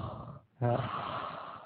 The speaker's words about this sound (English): Who wants to hear me breathe?